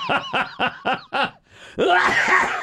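A loud coughing fit: five quick, rhythmic voiced bursts, a brief pause, then a longer harsh, raspy hack that trails off. No one speaks.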